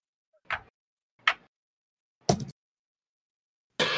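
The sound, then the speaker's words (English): Dice are rolled for a constitution check in a tabletop game, clacking against a hard tabletop in a few sharp, separate hits, ending in a longer rattling tumble. Crisp, with no voices. “Roll me constitution. I'm going to pull out the good dice for this one.”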